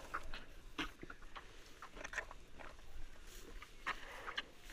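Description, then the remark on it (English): A beef cattle calf nursing at its mother's small udder, bumping very hard against it: irregular wet sucking and slurping mixed with soft, blunt bumps, coming in uneven bursts at moderate loudness with no voices. “What we're hearing is a calf very close here, nursing from his mom.”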